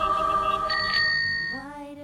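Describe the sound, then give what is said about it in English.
A bicycle bell rings out with bright, sustained metallic tones, its pitch shifting slightly near the end as the ring fades a little, with no one talking. “So a bell is sometimes salvation.”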